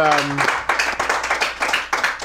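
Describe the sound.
A brief voice opens, then a small audience at a show taping breaks into steady applause for two guests, a dense patter of hand claps continuing fairly loud to the end.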